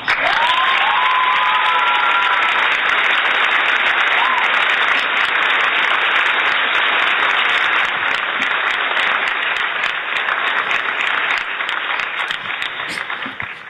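Loud, sustained applause from a large audience welcoming Burgess Owens back to the show Real Talk fills the whole stretch, dense and steady, with a few whoops and whistles rising near the start before the clapping tapers slightly at the end.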